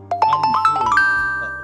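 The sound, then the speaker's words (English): A doorbell-like chime rings out: a quick run of bright, rising tones that settles into one sustained note and slowly fades, clear with no talking over it. “I always get a chime or when I said something that was powerful, like the universe.”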